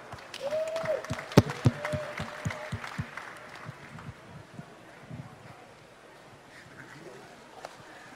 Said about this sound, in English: Give a big round of applause for Dana White.